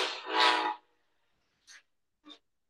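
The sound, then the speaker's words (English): An Amtrak train horn blows in a single blaring, harmonically rich blast lasting under a second, followed by two brief, softer bursts of sound after a pause. “Is that a fucking train?”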